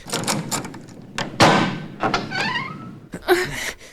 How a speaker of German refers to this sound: Da ist eine Tür. Verriegelt und verrammelt. Komm, mach sie auf.